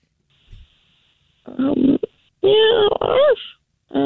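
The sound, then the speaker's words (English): A voice imitates a kitten and a dog: a faint low grunt, then loud bursts of whiny, bending mews mixed with rough growly sounds, cut off by a brief final cry. “That wasn't even near a dog and a cat fight. That was a kitten and a dog just kind of...”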